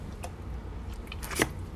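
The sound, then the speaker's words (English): A quiet sip of water: a soft click at first, then a brief wet slurp and gulp near the end, over a low steady hum with no talking. “Hold on, y'all, let me give me a drink of water.”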